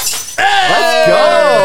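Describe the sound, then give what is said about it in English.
A glass liquor bottle, just poured out, is thrown into a corner on a set and smashes with a sharp, loud crash and scattering shards, followed at once by excited voices shouting and cheering over the tail of the breakage. “Let's mark this milestone as that's the first thing that Dalton has broken on set”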